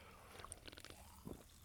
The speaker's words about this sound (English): I'm opening a drink right now. I'm going to take a sip.